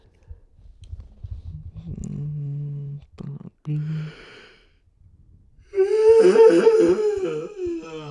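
A person yawns, with a low drawn-out breathy groan followed by a louder, wavering voiced stretch that rises and falls before trailing off. No words are spoken.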